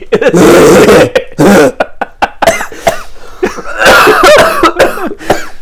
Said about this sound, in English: My fake coughing made me cough for real. Oh, it's terrible.